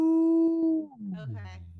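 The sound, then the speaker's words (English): A person lets out a single howl as a vocal warm-up, holding a steady pitched note for most of a second before sliding down into a lower, rougher tone. Loud, with nothing else around it. “My teacher would go, made me do that, like howling, like, ow.”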